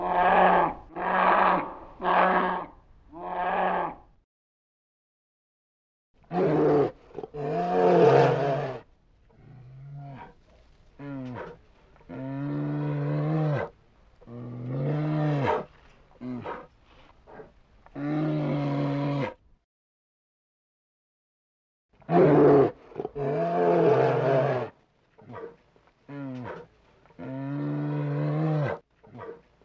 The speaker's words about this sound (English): But bears are vocal animals. They're not nearly as vocal as, say, an elk or even a mountain lion, but they do vocalize. And we're going to play a sound that is kind of a growl and kind of a low growl of a black bear.